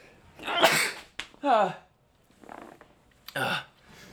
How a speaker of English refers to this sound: I'm gonna sneeze